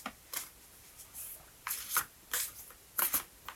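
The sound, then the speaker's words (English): A deck of oracle cards is shuffled in several quick, crisp bursts of riffling and sliding, fairly quiet, with brief pauses between them and no talking. “Yeah, shuffle it a little bit more.”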